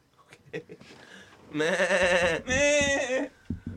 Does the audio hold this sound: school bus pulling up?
no